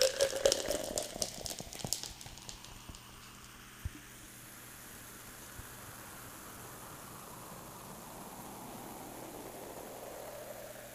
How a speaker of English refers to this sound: That's what I do with the ice. And I'm actually going to pour some of the ginger ale.